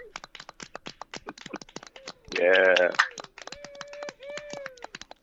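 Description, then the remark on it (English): A clapping sound bite: a quick flurry of sharp, irregular claps runs through the whole stretch, briefly joined by a loud voice speaking partway through and then a few thin sustained tones. “That was a sound bite, That was clapping, yes.”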